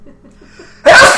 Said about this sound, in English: Bless you. Bless you. Bless you. I think that's the first time anybody sneezed on the podcast.